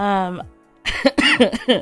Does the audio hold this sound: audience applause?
no